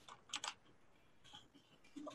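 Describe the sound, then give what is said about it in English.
Quick bursts of typing on a computer keyboard, a cluster of sharp clacks followed by a pause and a few more scattered keystrokes, quiet, with no voices. “Sorry for the keyboard.”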